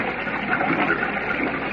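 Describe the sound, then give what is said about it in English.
Rushing, churning water of a whirlpool roars underground in a dense, steady torrent, loud, with no break or pause and no voices over it. “His sharp, all-seeing eyes have seen two figures being hurled into the mad, churning whirlpool.”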